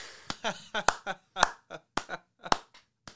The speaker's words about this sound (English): I would give you a standing ovation if it wouldn't take me out of frame. Goddamn. I will take that slow clap instead. Perfect.